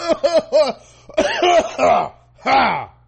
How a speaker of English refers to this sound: You ever say something so racist you just start coughing? That ever happened to y'all? That racist cough?